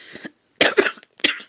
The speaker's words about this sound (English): Excuse me for that cough.